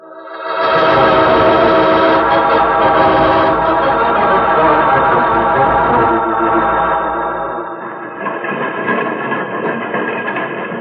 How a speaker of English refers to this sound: See? Train is slowing down so that we can jump off.